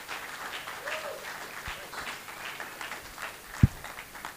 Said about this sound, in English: Yep, and he's going to give the word, so give him a cheer as he comes.